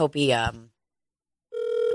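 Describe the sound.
A short burst of voiced, tonal sound is followed by silence, then a steady outgoing phone ringing tone: a sustained mid-pitched buzz with harmonics, continuing at an even level to the end.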